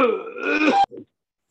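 A man, the speaker's father, lets out one loud, rough, strained cough in the background that drags on for almost a second, then a short softer cough right after, with no one talking.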